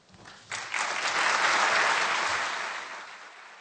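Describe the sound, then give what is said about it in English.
An audience at a medal ceremony breaks into applause as three sons come up to the stage: dense, steady clapping that swells quickly after a faint start, holds strong for a couple of seconds, then gradually tapers off. No one speaks over it. “So there's applause, and then the three sons come up”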